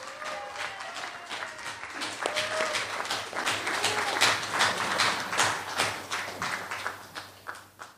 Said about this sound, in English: So please give them a big, warm round of applause.